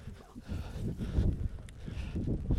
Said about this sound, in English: It's very windy.